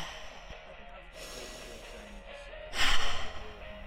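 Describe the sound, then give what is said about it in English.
Heavy, noisy breathing, a few long breaths in and out, ending with a louder gasping exhale near the end. “Are you showing me how good you are at breathing?”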